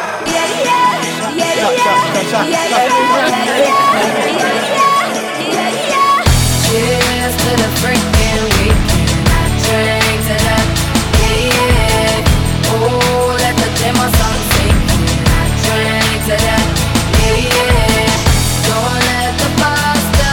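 A pop song plays loudly, opening with a lighter intro over murmuring bar crowd chatter before a heavy beat and full band kick in after about six seconds, continuing steadily.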